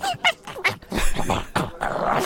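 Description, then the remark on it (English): A person imitates a neighbour's small mutt named Schizo, making a quick run of high, yappy woofs and squeaky whines with a breathy, strained edge, loud and uneven over about two seconds. “But it suits him because he kind of woofs and squeaks.”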